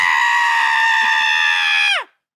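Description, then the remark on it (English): A person imitates a man's blood-curdling scream, one long, loud, piercing shriek held steady for about two seconds before it breaks off and drops away. “There's a man that screams like a blood-curdling scream.”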